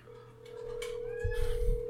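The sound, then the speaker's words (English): A steady, unbroken ringback tone hums from a phone as a call to a woman waits to be answered, with faint rustling and low thumps in the background. “Let me call her.”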